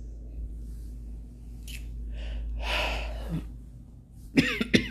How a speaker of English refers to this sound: I'm sorry, y'all. My nose is stuffy. Keep coughing. Bad allergies. And my nose keeps running.